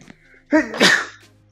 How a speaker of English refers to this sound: Excuse me, just had to sneeze.